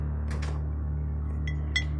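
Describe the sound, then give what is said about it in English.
A guava-flavour energy drink can is pulled from a small humming mini fridge under an office countertop: a brief rustle and shuffle, then two bright metallic clinks as it knocks against other cans, with no talking. “I reach into the fridge and pull out an energy drink at random.”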